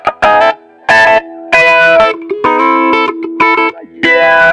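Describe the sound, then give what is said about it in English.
Loud, distorted electric guitar plays choppy bursts of chords and notes, its tone sweeping between dark and bright, vowel-like as a wah-wah pedal rocks. No one speaks. “there's a wah-wah pedal, which you kind of move up and down and it adjusts the sound envelope around your signal”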